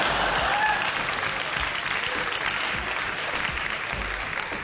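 A crowd applauds steadily, a dense wash of clapping that holds at an even, fairly loud level for several seconds before easing slightly at the end.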